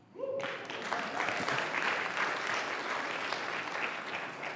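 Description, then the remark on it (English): An audience breaks into steady applause after a brief tone at the start, many hands clapping in a dense, even wash that holds at a strong level for several seconds. “Now, there would be a great place for you to clap.”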